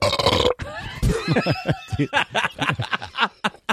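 Close, loud belching sounds come in a rapid string of gurgly croaks, mixed with snickering chuckles, with no clear words spoken.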